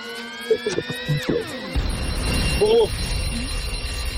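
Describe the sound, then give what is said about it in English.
A quiz buzzer goes off during a quiz round with a bright, buzzy electronic tone, pulsing briefly before its pitch slides downward, then gives way to a rough, noisy wash with a short voice sound. “Ah, it's out the buzzer.”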